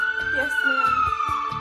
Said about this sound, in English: I woke up after hearing the sirens of the ambulance stop in front of my house.